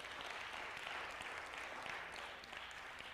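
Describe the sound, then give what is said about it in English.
An audience claps their hands in praise of God, in steady, dense applause, many overlapping claps forming a continuous crackling wash that holds at an even level throughout, with no talking. “Go ahead and give Him a hand clap of praise.”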